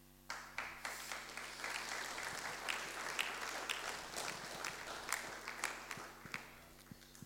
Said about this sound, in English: That applause means nothing to her. Really doesn't. She never did it for it, because whatever she does is done so quietly, nobody knows.